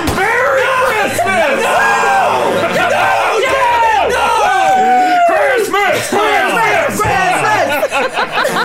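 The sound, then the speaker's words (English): A loud crowd gathering, cheering and yelling, many overlapping voices shouting and whooping with rising and falling pitch, sustained without a break for the whole stretch. “The crowd's gathering.”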